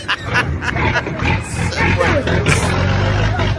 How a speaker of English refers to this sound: This guy's got their car stuck somewhere, and they got a truck pulling it out.